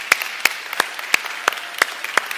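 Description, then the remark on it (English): A church audience at White Oak applauds the fathers standing up on Father's Day, with sharp, evenly spaced claps about three per second standing out over a steady wash of many hands clapping. No one speaks. “For all the stress that you've been through, you deserve at least 2 rounds of applause.”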